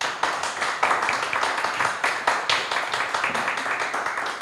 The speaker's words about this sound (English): I love the applause. It's so good.